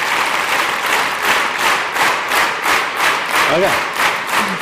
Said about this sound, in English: Somewhere in this room, I don't know where, a couple of people started clapping together and then another few started hearing that and then we all did it again. Let's do it again. Clap. Together.